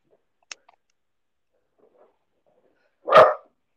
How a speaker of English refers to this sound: What are you barking at? One sec, I see what my dog's barking at. I can hear the dog barking in the background. He's just hearing somebody next door.